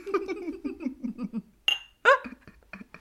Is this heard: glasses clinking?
yes